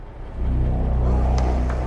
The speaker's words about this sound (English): climbed down into the car, started it up.